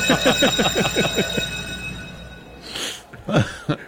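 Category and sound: signal or alarm, bell ringing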